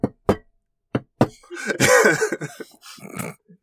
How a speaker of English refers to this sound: and knock on Dava's door. Yeah, Drix raps upon a wall. And then suddenly, yeah, that mysterious doorway opens up where there was no door.